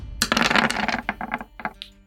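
A quick clatter of dice rolled for an attack in a game, landing on 11, a miss: a burst of rattling clicks across a hard surface followed by a few lighter taps as they settle, moderately loud with no talking.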